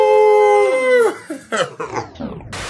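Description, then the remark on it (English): A person imitating a werewolf lets out a long, loud wolf-like howl that slides downward at the end, followed by a few shorter, choppy yelping cries. “Okay, my friend, my wolf, here's your mirror. Ow! Ow! Come on. Ow!”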